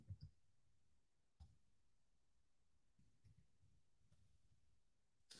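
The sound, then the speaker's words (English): A few scattered, quiet keyboard clicks tap out irregularly against a faint background hum, with long pauses between keystrokes and no one speaking. “These are the risers you came here to listen to me typing into my keyboard.”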